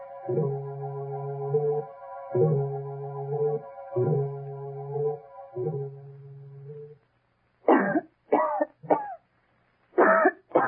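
Sustained, pulsing musical tones fade out, then a woman coughs repeatedly: a quick cluster of three harsh coughs, a short pause, then two more.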